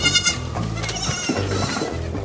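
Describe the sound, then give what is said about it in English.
Baby goats bleat in a quick, overlapping chorus of high, wavering cries, several calls running back to back, with no talking. “No, they were actual goats.”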